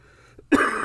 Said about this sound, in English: Oh, jeez. Cough too, obviously.